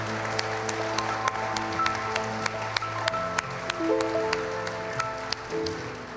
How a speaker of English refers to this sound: Come on, give me a hand clap of praise in this house today.